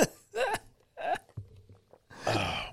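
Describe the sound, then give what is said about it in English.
Several harsh, breathy coughs, about 2 centimeters from the microphone, come in uneven bursts with short gaps between them. The last cough is the longest. No one speaks. “2 centimeters away from the microphone, coughing, concerned about spreading COVID at a Costco shopping cart.”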